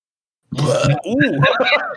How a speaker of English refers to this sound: I burped. What the hell was that? That was one of those like weird burps. It kind of came out.